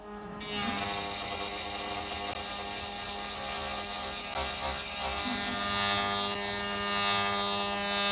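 A CNC machine runs steadily, recorded just outside its enclosure door, giving a loud, continuous mechanical drone layered with high whining tones that waver slightly in pitch. No one speaks.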